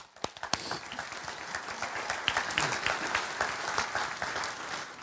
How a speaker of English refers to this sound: I mean, we just asked you to applaud and you're going, I don't know who she is.